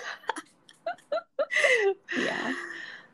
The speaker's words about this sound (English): It's like, just take a deep breath and, like, it sounds cliche and it sounds like, you know, like, everybody does it, but it actually does help scientifically. Breathe in and with your mask on, please, guys.